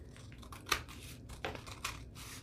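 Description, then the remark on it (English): Three crisp, quiet snips of scissors trimming off paper sticking out past 8.5 inches, spaced unevenly over a couple of seconds, with a soft low hum underneath and no talking. “And I could tear it or I could just cut it with scissors. And it's actually pretty easy to cut with scissors.”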